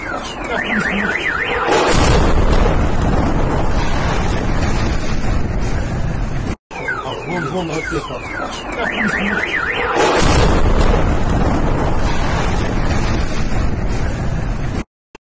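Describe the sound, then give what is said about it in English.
A rocket strike explosion in Kyiv, Ukraine, bursts out as a sudden, loud, rumbling roar over a warbling car alarm, and the same sequence plays twice with no talking. “The arrival of the rocket in Kiev.”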